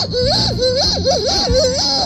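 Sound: child imitating a dolphin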